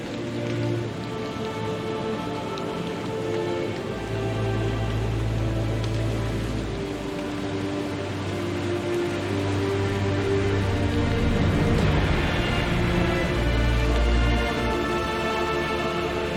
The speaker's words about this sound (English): Suddenly, the doors of heaven opened up, the rains poured down onto the earth, and the floodwaters quickly rose.